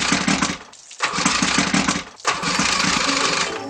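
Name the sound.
boat engine starting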